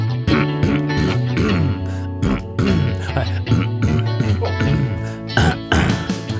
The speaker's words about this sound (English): Clearing my throat with the music. It's pretty gross, isn't it?